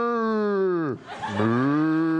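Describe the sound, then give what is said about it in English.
A cow moos loudly, two long drawn-out lowing calls with a brief break between them, with no other sounds around it. “Oh, God, I felt so bad about hitting that cow that we brought it into the writer's room, and it's working for us now, and actually, we won an Emmy.”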